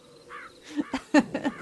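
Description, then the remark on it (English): A crow caws several times in quick succession, harsh, with the calls grouped into a short irregular burst over a quiet outdoor background. “Oh, great timing, Crow.”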